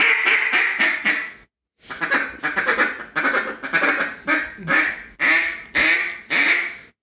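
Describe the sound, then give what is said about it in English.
A duck call blown in a rapid series of loud, nasal hen mallard quacks, with a brief pause before a longer run of rhythmic quacks and feed chatter. “Blow the call that way. I want to hear your fine hen mallard.”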